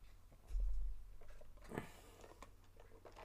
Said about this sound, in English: It picked up the zipper, by the way.